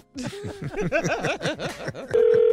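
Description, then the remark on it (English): A telephone being dialed for a prank phone call in the King of Pranks segment: a quick run of about a dozen chirpy, warbling tones, then a loud, steady buzzing ring tone that starts abruptly and holds to the end. No one speaks. “right now, though, it's time for the King of Pranks with today's prank phone call.”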